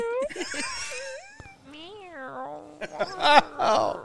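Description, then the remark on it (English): A cat meows several times in quick succession, fairly loud, its drawn-out cries rising and falling in pitch, with a louder, harsher burst near the end. “Cat's back. Cat attack.”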